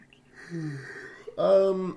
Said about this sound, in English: Wow, okay. Yeah, that yawn was definitely audible. It's okay. You know what? It's just one of those days.